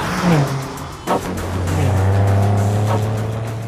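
A car engine revs hard and holds a steady, loud drone as the vehicle races by, with brief sharp bursts suggesting fast acceleration and no voices.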